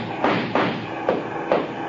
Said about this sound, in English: Can't you get no more speed out of this car, fella? She's doing all she can. Shoot at the tires,